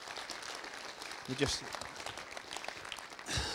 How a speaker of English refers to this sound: Before I start, can we have a round of applause for the worship band, because they were just incredible.